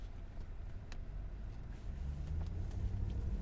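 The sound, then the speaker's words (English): A steady low engine rumble of road traffic during a road trip, with vehicles droning past and the noise swelling slightly louder toward the end. No voices. “Come on, traffic.”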